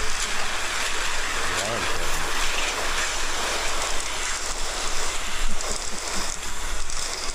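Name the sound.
rain falling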